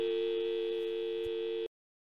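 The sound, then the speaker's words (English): A steady electronic tone from an old mobile phone holds at an even pitch for about a second and a half, then cuts off abruptly into silence. No voices. “How old is your phone? That one. Yeah. I look like a Nokia.”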